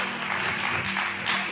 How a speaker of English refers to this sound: I got four claps. It's all good.